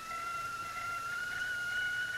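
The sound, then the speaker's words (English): A kettle whistles as water boils, a steady, shrill, high-pitched tone that holds its pitch and loudness without a break, with a faint hiss underneath and no voices. “Please immediately put the kettle on”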